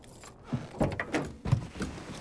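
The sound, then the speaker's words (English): A car door opens with a series of clunks and rattles as someone climbs out of the car at a farm in the countryside, several short mechanical knocks over about two seconds, ending in a heavier thump. No one speaks. “Matuhimi climbs out of the car and is met by an old kuia.”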